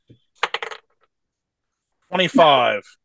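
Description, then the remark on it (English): Dice are rolled for a strength check in a game, clattering across a hard surface in a quick burst of three or four sharp, bright clicks, then a pause before someone speaks briefly. “What do you want me to roll? Dice.”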